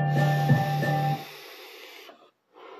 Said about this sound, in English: Pardon the vape.